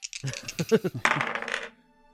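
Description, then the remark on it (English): Dice clatter across a hard table in a quick run of sharp clicks and bounces, then rattle briefly before settling, rolled at disadvantage for a blind bow shot in a tabletop game. Fairly loud, with no voices. “Roll, but at disadvantage, because you are just kind of firing blind.”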